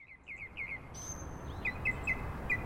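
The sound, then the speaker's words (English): Several birds chirp in a wetland in quick, repeated short calls over a steady outdoor background hiss, with a thin sustained high whistle joining partway through. “Birds love a wetland, otherwise known as a bog, a marsh, sometimes a swamp, a fen.”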